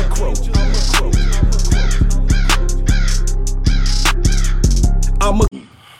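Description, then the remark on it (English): A person loudly imitates a crow, letting out a rapid series of harsh, raspy caws in a steady rhythm for several seconds before stopping abruptly. Nothing else is heard. “I'm a crow.”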